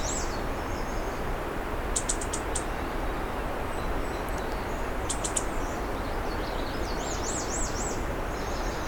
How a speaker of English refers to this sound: That one there. Maybe a redstart. Oh, it's a female black and white warbler making that sound.